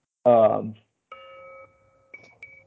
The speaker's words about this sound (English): Hold on, I'm getting a phone call.